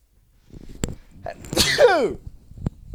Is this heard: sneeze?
yes